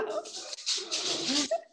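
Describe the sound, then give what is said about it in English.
A rescue dog barks at trucks going past the house in a short, rough burst of a few sharp barks, loud, with no other sounds around it. “And I love that I just heard your dog bark, because this is what I tell people.”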